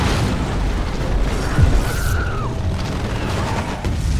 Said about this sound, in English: Enemy planes are flying overhead. Soldiers are parachuting in. I think one of the planes crashes into a house and there's a big explosion.